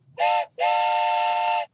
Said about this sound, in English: All aboard the birthday train. I've had this wooden train whistle for probably 15 years, and this might be the first time I've ever used it.